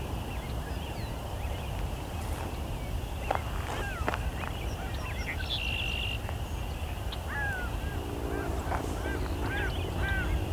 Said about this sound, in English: Some gulls going over. Can't actually even see these birds. I'm not sure where they are.